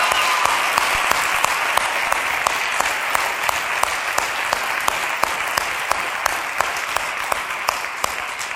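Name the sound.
audience clapping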